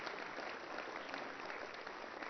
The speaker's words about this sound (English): How about someone giving me a good old-fashioned amen or hand clap if you believe any of that?